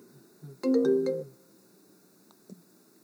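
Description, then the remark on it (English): A brief burst of a melodic phone ringtone, a quick run of bright stacked tones lasting about half a second, played loudly through projector speakers from a phone connected to a computer linked to the projector, followed by near silence and a faint click. “So my phone is connected to the computer, which is then connected to our projector.”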